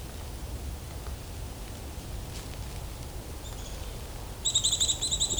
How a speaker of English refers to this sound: Sounds like there's a nuthatch as well, too.